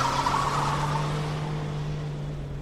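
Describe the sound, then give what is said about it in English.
A car engine hums steadily as a man who has taken the car drives it away, its droning tone gradually growing a little quieter over a couple of seconds with no voices present. “He's taken my car.”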